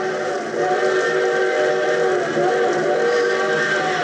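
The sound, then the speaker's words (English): A train whistle sounds in one long, unbroken blast, loud and close, its rich harmonic tone holding steady for several seconds with no voices over it; the train is to pass within a mile and a half. “But a train whistle sounds closer.”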